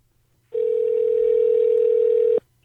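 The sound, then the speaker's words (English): A steady telephone dial tone of an outgoing call holds one unbroken mid-pitched hum for nearly two seconds, loud and alone, then cuts off abruptly. “Can we give him a buzz?”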